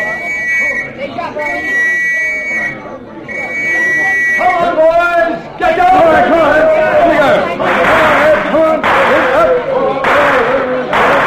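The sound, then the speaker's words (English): An agitated crowd in a street, being kept back by a police constable, murmurs and shouts in a dense, overlapping babble, preceded by a few seconds of shrill, steady whistle-like tones that cut in and out over the rising noise. “All right, Constable, keep that crowd back.”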